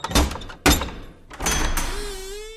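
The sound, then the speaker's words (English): A heavy wooden door's iron latch, the handle of an iron door knocker, clanks twice in quick succession, then the door swings open with a long, groaning creak. Fairly loud, with no voices. “On the right side of the door is an iron door knocker with a handle that doubles as a door latch.”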